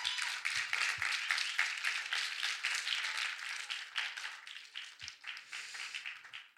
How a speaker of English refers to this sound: Can we give a light applause